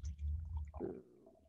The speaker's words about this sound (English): I'm actually going to open a little bit right now and I am going to pour some in my wine glass. Okay.